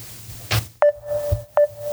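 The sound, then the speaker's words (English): A Facebook Messenger call ringing tone: a steady mid-pitched electronic tone that starts with a soft chime and repeats about once a second, alongside a brief noisy thump and some low background hum. “Ringing him.”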